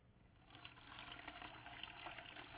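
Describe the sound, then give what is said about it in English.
Water pours steadily through a colander, a continuous soft splashing rush that holds for a couple of seconds at a fairly low level, with no voices over it. “I think rather than viewing ourselves as a pitcher that holds on to God's grace, I think God intended that we would picture ourselves, I learned this week, this is called a colander.”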